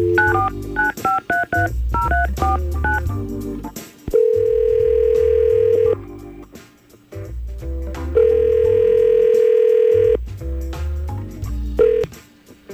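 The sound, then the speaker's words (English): A quick run of touch-tone dialing beeps, followed by two long electronic ringback tones separated by a pause, as an outgoing phone call to a man rings on the line. Clear, with no talking. “Let's try to get him on the phone right now and see what's going on.”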